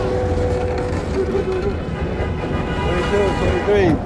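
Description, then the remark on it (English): Busy traffic on Manhattan Avenue from 113th to 110th Street, about 25 cars including a bus and a cab in a row heading downtown, with a steady engine rumble and car horns sounding throughout, some held and some rising and falling, with a voice faintly mixed into the din. “traffic, cars in traffic, horns blowing all over right now.”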